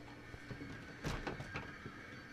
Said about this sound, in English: Well, the cleaning crew's here. Hold on, let me shut this door.